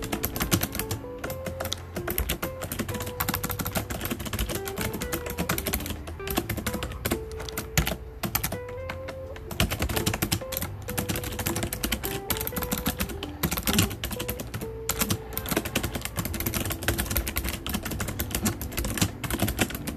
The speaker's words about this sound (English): Sorry if you can hear my keyboard. It's not mechanical, it's rubber dome, but it's fun.